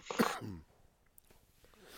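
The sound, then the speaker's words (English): A single loud cough bursts out at the start, harsh and slightly throaty, then fades into near silence with only faint background noise. “Jesus Christ, this cough is still lingering from that fucking bullshit.”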